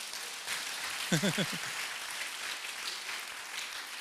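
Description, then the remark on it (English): An audience applauds its Princeton campus with a steady wash of clapping that lasts the whole time, and a single voice briefly calls out over it partway through. “Princeton campus, give them a hand right now.”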